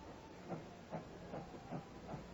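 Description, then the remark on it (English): A steam train at the railway station of Coombe Tracy chuffs in a steady rhythm, about five even puffs over a constant hiss of steam, with no voices heard. “Next morning, the trap took us to the station of Coombe Tracy.”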